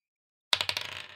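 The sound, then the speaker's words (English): Dice rolled for a check in a tabletop role-playing game clatter across a hard table, a quick run of sharp, bright clicks that tumble faster and softer as they settle, with no voices. “It's two on the dice, so three total.”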